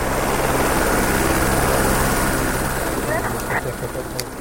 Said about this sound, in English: Within minutes, a helicopter approaches us as we walk down from the pipeline route and onto the village soccer field. Suddenly, we realize the chopper is landing. Kids abandon their game and scatter. Everyone's hair is flying in the rotor wash.